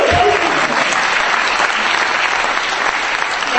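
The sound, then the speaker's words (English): An audience applauds steadily, a dense wash of many hands clapping at an even, fairly loud level throughout, with no pauses or single distinct claps standing out. “I would clap more if you buy the book now.”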